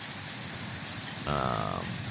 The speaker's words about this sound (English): It's very loud by the water here, the rushing water.